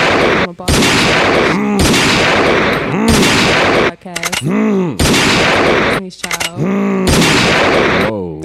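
Loud bursts of rapid gunfire crackle in dense volleys, broken by short gaps where rising and falling vocal or tonal sounds come through before the shooting resumes.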